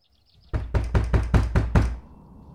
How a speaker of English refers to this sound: I almost reached the door, and there's a loud knock.